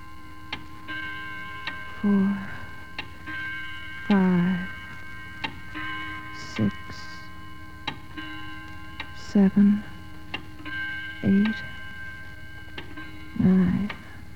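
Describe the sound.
A clock ticks in a steady, sharp rhythm over a constant low hum, with brief murmured voice sounds breaking in now and then.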